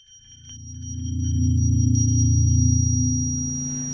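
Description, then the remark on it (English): A thin, steady high-pitched ringing tone simulating tinnitus, a ringing in the ears when no sound is present, holds unbroken throughout, over a low droning rumble that swells in the middle and fades slightly at the end. No one speaks. “tinnitus, which is a ringing in your ears when there's no sound present”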